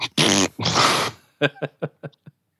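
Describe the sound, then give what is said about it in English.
Two loud, sputtering fart noises blown with the lips, each lasting about half a second, followed by a few short voiced bursts trailing off into quiet. “We have, and nobody's made a fart noise yet.”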